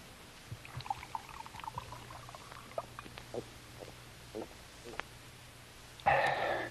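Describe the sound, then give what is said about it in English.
Scattered small clinks and rustles over a low steady hum, then a short, loud rush of water being poured into a glass at the very end. “Could have a drink of water, sir. Certainly. Right here.”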